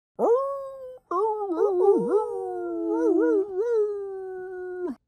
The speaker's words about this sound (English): A farm dog answered the train, and then a second dog joined in.